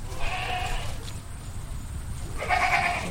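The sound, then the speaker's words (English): Goats and sheep bleat twice on a biosecure farm in Newport, Rhode Island, one wavering cry early and another near the end, clear over a low outdoor rumble, with no one talking. The herd includes Gulf Coast sheep, Hog Island sheep and Tennessee fainting goats. “He's protecting an unusual herd of goats and sheep from lurking coyotes.”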